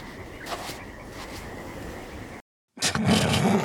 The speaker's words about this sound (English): Sandy footsteps.